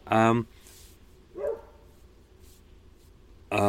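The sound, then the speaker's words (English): A dog barks loudly, three sharp barks spaced a second or two apart, with a softer middle bark and quiet background in between. “Dog's still barking.”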